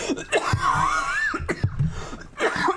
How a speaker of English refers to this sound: I just can't shake this cough. I've had it for... It's not COVID. Stop looking at me like that. I do it because I care. I just can't seem to shake it. It's just, it's not going away.